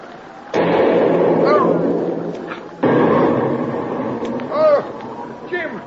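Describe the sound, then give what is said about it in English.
Two artillery shell explosions strike near a boat in quick succession, each a sudden loud blast that rolls into a long, heavy roar, with faint wavering cries rising over the din. “The concussion from that last shell knocked you down, that's all.”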